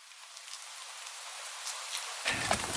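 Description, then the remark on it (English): Steady rain falls on a tent during an all-day rain, a dense, hissing wash with individual drops pattering on its surface. The sound grows fuller and heavier near the end, with no voices. “And then the rain came and it rained all day. It never stopped.”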